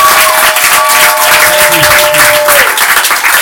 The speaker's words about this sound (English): Ladies and gentlemen, time wise, we're going to finish here, but can I have a round of applause, please? Thank you very much.